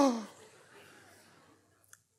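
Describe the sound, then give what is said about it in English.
A voice imitates a team's sharp gasp at someone spilling a cup of water on their pants: a sudden breathy intake that starts loud and trails off into a fading airy rush, with a faint click near the end. “gasp in the room, all the air.”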